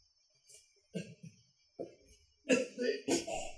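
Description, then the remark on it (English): A series of harsh coughs after drinking a disgusting-tasting liquid, starting with a couple of short hacks and building to two louder, rougher bursts at the end, over a faint steady high whine. “But I also hate bloodline, so I cough because it's disgusting.”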